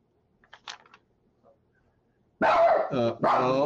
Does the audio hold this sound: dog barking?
yes